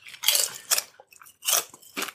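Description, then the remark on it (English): Loud crunching of Boulder Canyon kettle-style classic sea salt potato chips, cooked in avocado oil, being chewed, with four sharp bursts of brittle crackling separated by brief pauses, no talking. “Y'all hear that crunch? Talking with my mouthful? It's, it is crunchy.”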